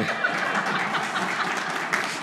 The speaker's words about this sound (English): Okay, so how about a round of applause for the pastors?